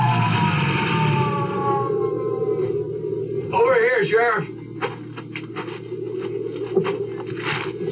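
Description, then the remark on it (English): A sheriff's Jeep siren whines in rising and falling wails over a rumbling engine as the Jeep heads for the bottom of a ski run, then gives a brief wavering burst before fading into scattered clicks and clatter. “Well, I got the Jeep started without too much trouble and headed for the bottom of the ski run. A red flasher blinking and a siren whining.”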